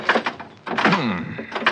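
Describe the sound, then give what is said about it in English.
A stuck car door rattles and thuds as someone yanks at it, with a short creaking squeal in the middle, fairly loud, with no one talking. “This door doesn't seem to want to... You trying to pull some trick? No, open that door. Well, it's stuck, I guess.”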